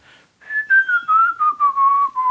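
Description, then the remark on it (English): Someone whistles a slow tune alone, a clear bright melody of about seven connected notes that gently drift downward in pitch, moderately loud. “He's just whistling.”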